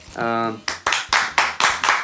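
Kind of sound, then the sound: human body sound, hands clapping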